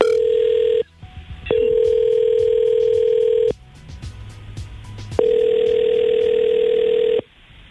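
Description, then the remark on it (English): An outgoing phone call rings back: a steady electronic ring tone sounds in three long bursts separated by pauses, with faint background noise between rings and no one speaking. “Call her right now.”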